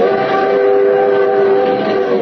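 A limited train running with a steady, loud rolling roar and a sustained mid-pitched tonal drone over it, continuous for the whole stretch with no voices.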